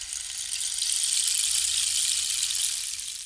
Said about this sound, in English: Is that the spoiler sound or the rain stick sound? The rain stick sound.